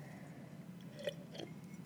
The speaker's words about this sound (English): So for those of you, let me take a sip, hold on.